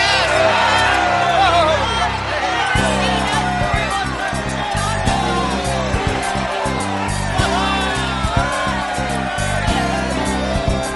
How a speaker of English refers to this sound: Shout! Yell! Scream! So that the heavens can hear you! Shout! For God has given us Jericho!